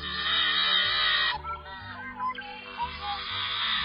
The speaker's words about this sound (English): It's the yellow-headed blackbird. And maybe that fingernails on a blackboard call explains why its genus contains no other members.